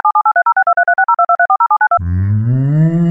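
A Skype call ringtone plays as a quick run of short, bright electronic beeps alternating in pitch for about two seconds, then a voice sings a sustained, rising note imitating it.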